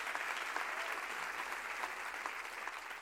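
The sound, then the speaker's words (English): An audience claps their hands in steady, dense applause, a continuous wash of overlapping claps that stays fairly even in loudness throughout, with no voices standing out. “Clap your hands.”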